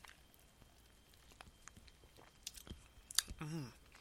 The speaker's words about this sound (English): With the aroma, doesn't have that cheap wine smell to it. Smells, like I said, just like fruit punch. Let's take a sip.